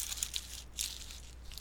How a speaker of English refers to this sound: Is that the wrapper? Mm-hmm. Okay. A little crunchy. Is it a snack food? Sure. Okay, you are totally sure about that, though. Yes, it's a snack food.